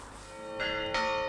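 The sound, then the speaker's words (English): Church bells in Avantas, Greece toll a warning for residents to leave during wildfires, with two strikes in quick succession whose bright, ringing tones overlap and sustain over a continuing hum of earlier peals. Fairly loud and reverberant, with no voices. “So in Avantas, the bells toll a warning.”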